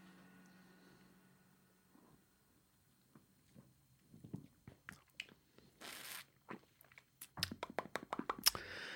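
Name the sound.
sipping beer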